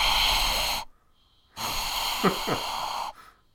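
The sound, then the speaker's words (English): Two long, exaggerated breaths rasp loudly right against the microphone, a harsh wheezy inhale then exhale separated by a short pause, with a brief vocal catch midway through the second. “Should we just switch to heavy breathing for the next 40 or so minutes?”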